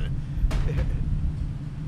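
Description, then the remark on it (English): A big truck rumbles with a deep, steady engine drone, punctuated by two quick thuds as its wheels bounce over a curb. “Whoa, that guy just drove over that curb.”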